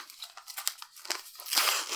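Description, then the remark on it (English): Crisp crinkling and rustling of gift wrapping paper being unwrapped and slowly torn, with irregular bursts that grow louder and fuller toward the end as a bigger rip opens up. “I'm going to try and be careful because I want to keep the front paper because you've put a lot of time into this.”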